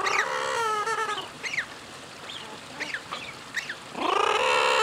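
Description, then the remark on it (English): A group of about 30 common murres calls from an outdoor circular tank filled with water, loud overlapping harsh, nasal cries at the start and end, with shorter, sharper calls scattered in between, as some zip around and dive and one beats the water with its wings, splashing. No one speaks. “There are about 30 murres in this tank.”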